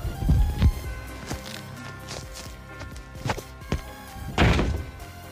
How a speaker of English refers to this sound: That's all she does, walk around the house and slam doors. I gotta deal with that all day.